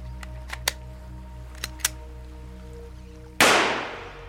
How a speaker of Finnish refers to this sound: Näin. Minä ammuin juuri itseäni päähän